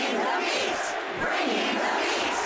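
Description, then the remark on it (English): A large crowd at a basketball game roars and chants together, a dense, steady wall of voices that stays loud and unbroken throughout. “What's the crowd chanting?”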